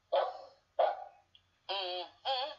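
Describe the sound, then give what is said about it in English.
The dog Brandon barks four times: two short, rough woofs, a brief pause, then two longer, more tonal, drawn-out barks, with no talking around them. “Excuse me, folks, you're talking to a dog. This is no ordinary dog.”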